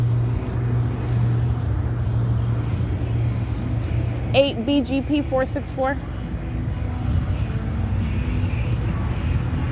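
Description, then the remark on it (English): A motorcycle rumbles past a parked car on Fern and G Street around 6:31 p.m., its engine note swelling briefly midway, over a steady low idling hum and broad road noise heard from inside the stationary car. “The entity engages in vibrating the vehicle while a motorcycle drives by me in the car, where the people of the state are monitoring on Fern and G Street.”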